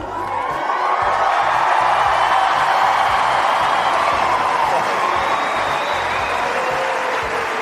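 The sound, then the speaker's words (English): A large home crowd applauds and cheers a win, a dense wash of clapping with scattered whoops, loud and sustained for several seconds without letting up. “I know what the answer is going to be, but please tell us how much this win means to you, particularly in front of this home crowd.”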